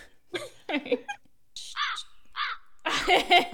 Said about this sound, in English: What a bird? I used my button again. Oh, I have a soundboard that has buttons on it.